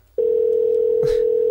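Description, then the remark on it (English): A steady, unbroken electronic phone tone starts abruptly and holds at an even level, a line ringing out while a call is transferred and waits for someone to pick up, with a faint soft noise near the end. “Oh my god, I mean, someone answer the damn phone.”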